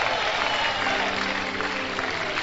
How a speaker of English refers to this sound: Well, look at how you are still clapping, like you are not.